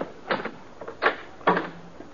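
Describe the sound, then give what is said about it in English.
The door of a rooming house being opened: three short, sharp clicks and clunks of the latch and handle in quick succession, the last followed by a brief low creak as it swings. “While you open the door, you ain't got a thing to worry about.”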